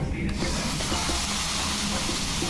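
A whole fish sizzles and sears in hot oil, a steady crackling hiss that swells in within the first moment and holds constant, with a low background rumble underneath.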